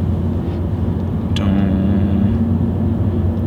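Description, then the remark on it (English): A car's engine and tyres rumble steadily and loudly, as if heard from inside while driving on winding one-way roads, with a brief sharp whoosh partway through followed by a low humming engine tone. “Oh, watch out for that car.”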